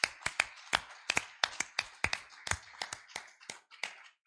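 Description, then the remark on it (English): An audience claps their hands in praise of God: a run of sharp, crisp claps at an uneven, loosely shared rhythm, fairly loud, with no voices over them. “Let's give Him one more hand clap of praise this afternoon.”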